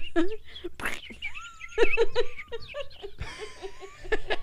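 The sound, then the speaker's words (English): A voice imitates bird chirping with quick, whistly mouth-made tweets and rising glides, repeated over a few seconds, while soft chuckling and laughter break in. “I can't believe I could do that noise in my mouth.”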